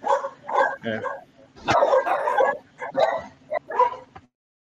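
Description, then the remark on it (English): A dog barks and yips in a quick, uneven series of about eight or nine fairly loud bursts over a faint steady low hum, ending abruptly. “This is why they said no dogs.”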